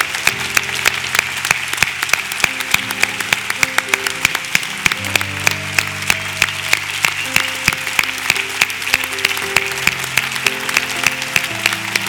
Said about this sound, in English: Let's give them a hand as they make their way forward.